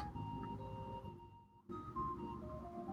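The theme from the TV show Taxi, a smooth jazz tune, plays on pop jazz radio during a Lyft ride: mellow sustained melodic notes over a soft bass, with a brief dip in the middle before the music carries on. No one speaks.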